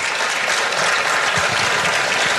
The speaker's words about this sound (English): And you can clap for that.